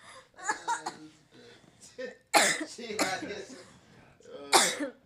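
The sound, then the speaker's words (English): Several harsh, loud coughs burst out, about three distinct fits spread over a few seconds, mixed with some vocal sounds and murmuring in between. “People cough nowadays.”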